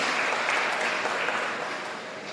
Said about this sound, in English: So can we just give a round of applause?